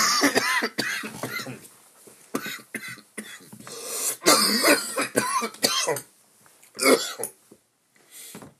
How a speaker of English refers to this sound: Ugh. It's fucking cough. It's terrible. Hold on. Yeah, this cough is terrible, ladies and gentlemen. Man.